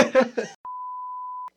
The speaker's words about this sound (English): Let's put the beep right here just so it looks like it's late.